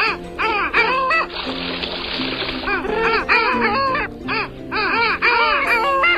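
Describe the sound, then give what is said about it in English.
Long-tailed ducks (Clangula hyemalis, nicknamed Noisy Duck) call continuously in a noisy chorus, their nasal, yodeling honks overlapping, with a harsher burst of calls around the second and third seconds. “The only living member of the genus Clangula, the long-tailed duck, Clangula hyemalis.”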